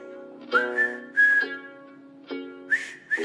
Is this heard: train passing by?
no